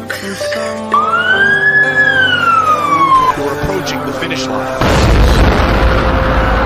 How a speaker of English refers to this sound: First of the two explosions rocks the sidewalk along the course.